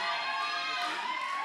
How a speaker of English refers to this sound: Guys, this is too fun for me. If you keep cheering, I'll just go on and on.